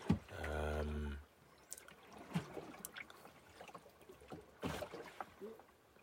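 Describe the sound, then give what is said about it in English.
Oars dip and splash into water in a few irregular strokes, with soft trickling between them, after a brief low droning tone at the start. “So that just means it's all a bit messy, like, with, in terms of strokes and where they're hitting the water, and are they having any sort of impact in moving you forward.”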